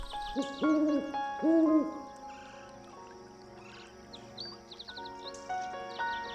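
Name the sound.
owl hooting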